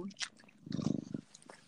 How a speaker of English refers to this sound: Oh. He's rubbing his face on the phone. I was like, I think I hear purring, but I think I also hear lots of scraping. Yeah, no, that was him rubbing his face on the phone.